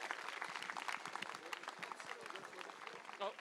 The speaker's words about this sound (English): But I think it's been an unbelievable turnout from you all here this evening. So give yourselves all one big final round of applause and well done.